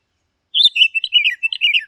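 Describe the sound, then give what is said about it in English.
An Oriental Magpie Robin sings a loud, varied phrase of quick whistled and warbling notes after a short pause of silence, with no voices or other sounds. “Continuing with our list of melodious birds, one can neither forget nor ignore this powerful songster, the Oriental Magpie Robin.”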